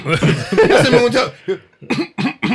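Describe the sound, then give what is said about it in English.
A voice imitates a bout of coughing: a drawn-out, rasping hack followed by four short, sharp coughs in quick succession, fairly loud. “He just kept coughing.”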